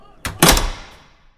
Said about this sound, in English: Close the door. What? Let's go. Close the fucking door to the fucking school, sweetie.